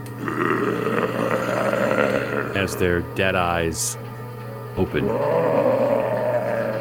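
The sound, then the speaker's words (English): Deep, rumbling guttural growls from figures churn steadily for the whole stretch, with a speaking voice cutting in over them partway through before the low snarling continues alone. “Even as you take in the smell, your ears take in the sound of deep, guttural growls from the figures.”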